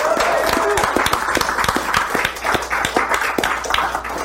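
An audience at the third annual Valiant Summit in Los Angeles, California breaks into steady applause for the Hyper RPG crew, many overlapping claps forming a dense, sustained wash of sound for several seconds, with a few sharper individual claps standing out.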